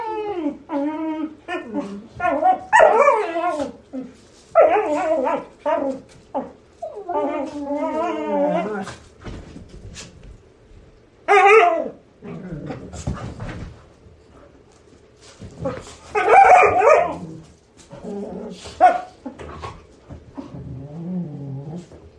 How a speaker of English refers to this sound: there is a lot of dog play going on in the background, which is not necessarily conducive to recording podcast episodes. Here is a little sample of said dog play.